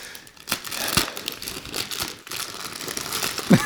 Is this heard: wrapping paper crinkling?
yes